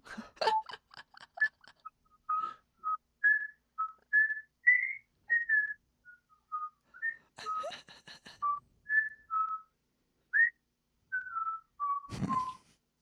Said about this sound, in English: I thought you were whistling one of their songs. Yeah, that would have made more sense. I went for the Jeopardy theme.